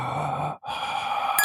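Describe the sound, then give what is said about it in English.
A sound effect of heavy, muffled breathing: one long hissing breath, a brief pause, then another, with a hollow masked quality and no talking. “it actually just sound like Michael Myers breathing in his mask.”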